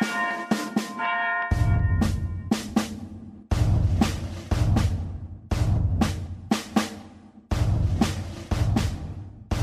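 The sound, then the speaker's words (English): A bell clangs over and over in a steady, insistent rhythm, loud, each strike ringing out over a low rumbling drone with no voices. “Ring the alarum bell!”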